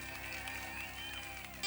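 A church audience applauds and cheers in a steady, dense wash of clapping and voices, holding an even level before swelling louder in the final moment.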